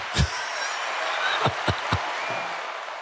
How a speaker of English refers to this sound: There you go. Well. There's your applause.